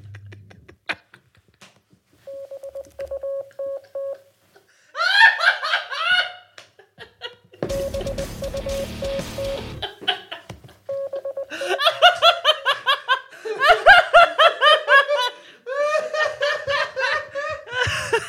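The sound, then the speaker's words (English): Morse code beeps spelling the word "butt", a steady mid-pitched tone keyed in short and long pulses, sound twice between loud bursts of group laughter and giggling, with a rush of hiss under the second run. “There it is, butt in Morse code.”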